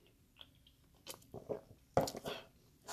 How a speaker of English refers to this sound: So I'm going to get a little sip of this sparkling water.